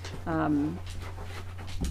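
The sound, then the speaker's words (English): A dog gives one short, nasal whimper, followed by soft breathy panting over a steady low hum. “Remember, we have a dog and a cat here.”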